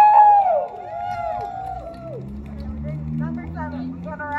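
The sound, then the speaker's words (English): A crowd at a rally cheers as the chant and song lead is welcomed up, with a loud, high whoop at the start, followed by a steady murmur of many voices and scattered shouts. Applause isn't distinct, and people talk throughout. “So, we're gonna welcome up again another warm round of applause for our amazing chant and song lead”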